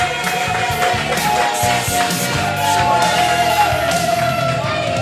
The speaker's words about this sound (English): Ladies and gentlemen, a round of applause to you for yourselves. You guys were a great...